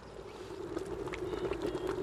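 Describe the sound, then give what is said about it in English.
Quicklime bubbles and froths in a bucket of water as steam rises and the liquid turns a creamy, double-cream colour, giving a steady seething churn with scattered small pops and fizzing crackles over a low, constant hiss. “So steam is rising from the bucket, and this liquid inside, this creamy, like double cream colour, is bubbling and frothing.”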